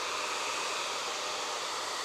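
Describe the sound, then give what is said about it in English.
A hair dryer blows with a steady, even whoosh of airflow, drying a painted wood-grain effect on a panel before a glaze is put on. It runs continuously at constant loudness with no pauses and no voices. “If I dry that with a hairdryer, and then we can put the glaze on so you can see the glaze.”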